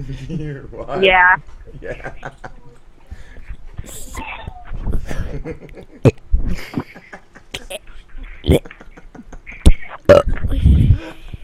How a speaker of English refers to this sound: What are you doing? Burping into the microphone.